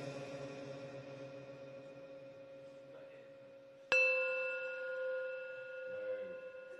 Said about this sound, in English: Okay, you ready for this? I'm going to turn it up. Turn it up. Okay, we're going to do the old gong and spin.